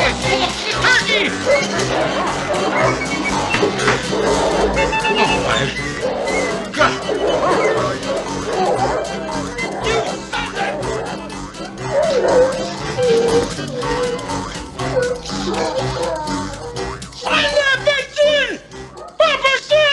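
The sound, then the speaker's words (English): Several dogs bark and yip excitedly in a loud, chaotic scramble that runs the whole time, with high-pitched yelps near the end and a clamour of voices mixed in. “Just saw what those terrible dogs did.”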